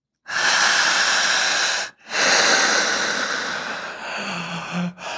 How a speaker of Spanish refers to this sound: Del 2020 para acá se le conoce como respiración sincrónica. Palabras que todo mundo puede entender. Hazle así.